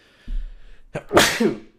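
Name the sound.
sneeze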